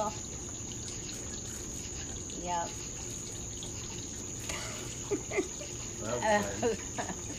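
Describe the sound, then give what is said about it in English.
A cicada gives a steady, thin high-pitched buzz throughout, with a few soft knocks as it bumps its head against something under an awning, and brief voices murmuring in the background. “As a cicada. It's kamikaze style.”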